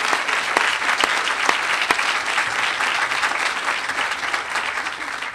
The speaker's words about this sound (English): So a heartfelt thank you and round of applause for all of you.